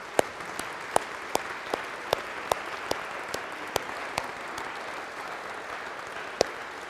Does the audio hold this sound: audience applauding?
yes